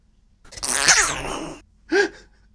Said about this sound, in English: Hang on, I'm going to sneeze. Okay.